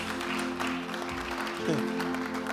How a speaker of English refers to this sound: Are you clapping?